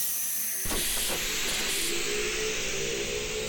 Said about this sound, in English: The next drop is the Interspace Institute. Stand clear of the closing airlock, please.